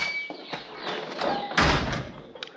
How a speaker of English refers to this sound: Oh, yeah, gotta shove that door hard. Sticks a little.